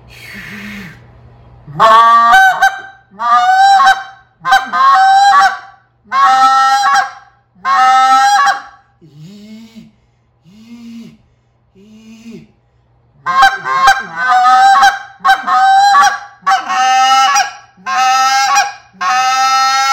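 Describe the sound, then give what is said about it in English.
A goose call blows fast trains of loud, harmonic honks in rhythmic clusters, with spit notes blended into the train, broken by a stretch of short, softer low notes before another rapid run of honks. “What I'm going to do though is I'm going to add a little bit with the train, and the spit note with the train and come back and stuff like that.”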